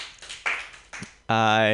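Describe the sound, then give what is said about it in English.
Brief, scattered applause from an audience clapping for the performer's sponsors, a few bursts of clapping over about a second, cut off as a man's voice speaks loudly over the end. “They clap it up for my sponsors.”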